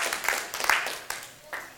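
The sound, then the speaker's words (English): A group of people applauding, a dense, crackling patter of many hands clapping at once that swells and dips over about two seconds, with a brief lull before a last burst. “Please, clap for yourself.”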